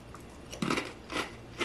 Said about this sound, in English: And it's very crunchy. So that kind of Takis Crunch, which is just, unlike any other snack food, I would say is there, which I like.